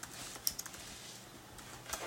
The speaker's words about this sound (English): Apparently have really slow typing going on. That happens. Yeah. Maybe it's because we're Skyping, recording, and I'm drafting.